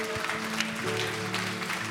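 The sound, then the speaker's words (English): A church audience gives the Lord a clap offering, a dense wash of many hands clapping steadily at a constant level, with a low sustained organ or keyboard tone underneath and no voices. “We just give the Lord a clap offering.”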